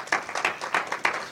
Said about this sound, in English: Do you love him this morning? Yes, well, go ahead and give him a hand clap of praise then.